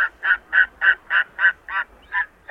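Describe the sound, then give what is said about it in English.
A Steller's sea eagle calls on the coast of Maine in a rapid, steady series of about nine harsh, honking barks, loud, with no voices or other sounds around it. “Recently, an ultra-rare stellar sea eagle turned up on the coast of Maine.”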